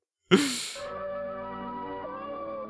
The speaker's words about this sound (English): There's a cat. You always gotta have pets in these vacuum commercials. The cat sneezed and it shed like its whole coat.